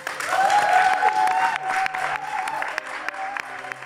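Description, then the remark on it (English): An audience at the Albany during the Smash Fest festival applauds the panel steadily, a dense wash of clapping with a few whoops and cheers rising above it, holding at a fairly loud level throughout. “And also applause for our incredible panel.”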